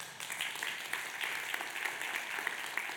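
Steady audience applause for a worship team after their performance fills the space, a dense wash of many hands clapping at once, moderately loud and sustained throughout with no voices standing out.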